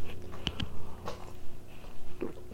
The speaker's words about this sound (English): First sip. Excellent.